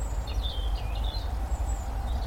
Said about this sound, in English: I think there's house martins still. Yeah, I can hear house martins. Yeah. Nasally.